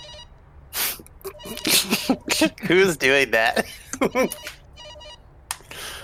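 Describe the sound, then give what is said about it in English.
An outgoing phone call to a car detailing business in East LA rings through a speaker in short repeated tonal bursts, fairly quiet and steady, while people talk and a brief vocal burst like a sneeze or cough cuts in. “Give him a call.”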